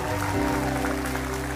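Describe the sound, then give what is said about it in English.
A church audience claps steadily and densely as a clap offering to the Lord during a worship service. The applause is spread evenly throughout, over sustained organ-like music tones holding underneath at a moderate volume. “Give the Lord a clap offering and tell him you love him.”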